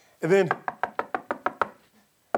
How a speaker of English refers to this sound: Rhoda actually hears the knock, comes to the gate.